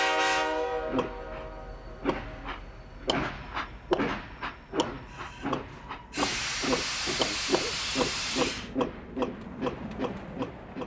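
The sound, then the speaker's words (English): A steam locomotive sounds its whistle at the start, then chuffs in a steady, quickening rhythm, with a loud burst of hissing steam for a few seconds near the end. No voices. “That was a gravy train.”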